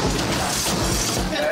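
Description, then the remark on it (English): Glass breaking and shattering, loud, with a few heavy crashes and a steady bright crunch of falling shards. Voices murmur faintly underneath. “I love breaking glass.”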